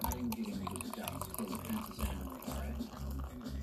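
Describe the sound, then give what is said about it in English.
Beer pours steadily from a second can into a glass, a continuous gurgling and fizzing stream that lasts a few seconds over a low background rumble. “Let's pour the second can into the glass.”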